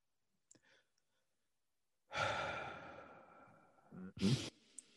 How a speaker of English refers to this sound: Breathe. You breathe. Breathing brings you back to control. It brings you out of every elevated emotion. It brings you back to your body.